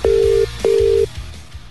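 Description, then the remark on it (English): Two loud, steady telephone tones at the same pitch sound one after the other as someone places a phone call, each lasting under half a second with a brief gap between them. Nobody speaks. “Yeah, we're gonna call someone right now,”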